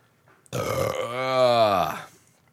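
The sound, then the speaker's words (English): A long, loud belch caused by heartburn, lasting about a second and a half with a low, drawn-out croak that rises and then trails off. “Look at belch.”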